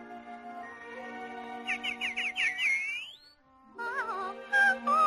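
Walt Disney's mechanical songbird in a gilded cage chirps and warbles in quick rising trills and sliding whistles, bright, over a steady tonal background, with a pause before another burst of twittering.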